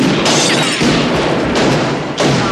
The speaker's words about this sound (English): there's things we notice, like the hand cannon sound effects.